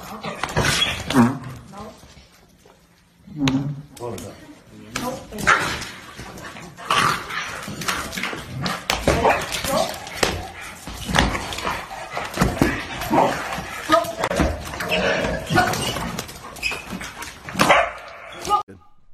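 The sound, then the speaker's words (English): Several dogs bark and yelp repeatedly at a dog training class in China, in a busy, echoing space, with sharp yips and whimpers overlapping, while human voices are heard mixed in with the commotion. “This is a dog training class in China.”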